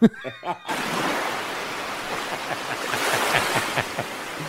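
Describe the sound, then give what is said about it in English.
After a brief voice-like blip, a big crowd of fans roars in a dense, steady wash of cheering that holds at full volume with scattered shouts rising out of it. “I'm going to hit the sea of fans, let you talk for a second.”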